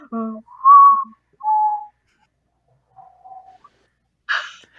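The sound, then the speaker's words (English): A person whistles a secret tune as a clear two-note call, then a fainter whistle answers the call after a pause, followed by a short breathy hiss. “Try whistling once it more.”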